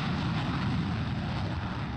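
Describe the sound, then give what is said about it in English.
A jet plane roars overhead near an airport in a steady, continuous rumble. It is deep and broad and holds the same loudness throughout, with no voices present. “Wait, do I hear that jet plane going?”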